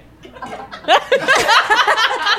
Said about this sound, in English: I'm not somebody who burps a lot. I save it for the air.